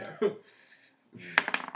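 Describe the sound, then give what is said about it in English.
Dice, rolled for two perception checks in a tabletop role-playing game, rattle and tumble across a hard tabletop in two short bursts, a brief clatter followed by a quick run of sharp clicks as they settle, fairly quiet. “Will you roll me a two perception checks and take the worst one?”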